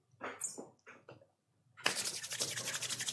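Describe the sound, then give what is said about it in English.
Hands rubbing briskly together, a steady, fairly loud dry swishing friction that runs for over a second, preceded by a few short, softer scuffing sounds. “I rub my hands together and lay on hands for 10 points.”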